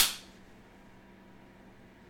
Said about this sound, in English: No, do the clap thing again. I swear, I thought it was on point. Okay, so 3, 2, 1, clap.